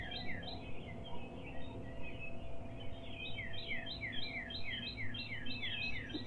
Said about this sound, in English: This is probably one of my favorite parts of the dawn chorus, right as new singers start to add in their songs. But this part is also nice because it's before the starlings wake up and start their racket.